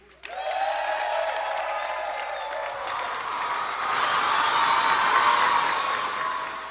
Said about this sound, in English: When the winner wins, you're going to make a lot of noise. Applause. So let's have a sample of what this applause sounds like.